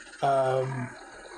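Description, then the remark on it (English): A man's voice lets out a single sustained, growling roar, loud, breaking off abruptly after well under a second, a vocal imitation of an enraged bellow. “And the entire room goes quiet, the music drops to a lull, and he roars in rage in the middle of the room.”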